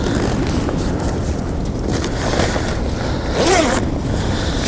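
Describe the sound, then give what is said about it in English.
A coat's zipper rasps in a short, scratchy burst as the coat is tidied away, with lighter fabric rustling around it, all over a steady low rumble of wind. No one speaks. “So let me just tidy this coat away.”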